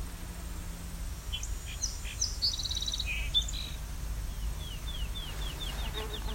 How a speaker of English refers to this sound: It's also field sparrow singing. Song sparrow, too. Yeah, there's two right here.